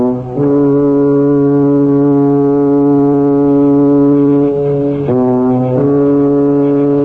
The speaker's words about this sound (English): Here's the British aeroplane.